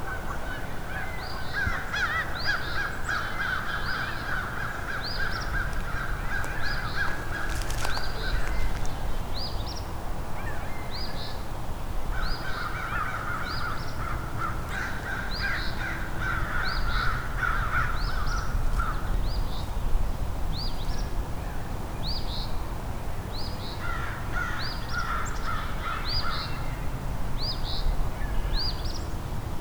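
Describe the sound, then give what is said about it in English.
A loose flock of about 10 American crows caws over and over, harsh calls overlapping in uneven bursts above a low rumbling outdoor background, with no one speaking. “It's about 10 crows here and an eastern Phoebe singing.”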